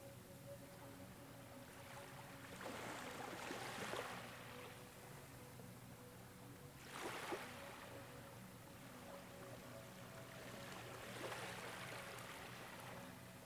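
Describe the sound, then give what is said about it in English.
Gentle sea waves wash in softly about every four seconds on a sunny afternoon with a light breeze, three quiet surges rising and fading over a steady low hum, with no voices. “The only sound in the afternoon sunlight is the sea, a light breeze, and some seagulls.”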